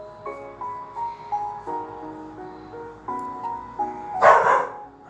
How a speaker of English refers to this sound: There goes the dog.